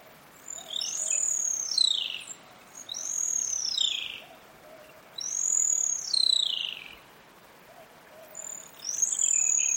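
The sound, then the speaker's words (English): A pair of extremely rare sooty owls in a tall forest in Australia gives long, descending screeching whistles, four calls in steady succession about two seconds apart, clear over a quiet forest background with no talking. “That's where Andrew Skioch recorded this pair of extremely rare animals called sooty owls.”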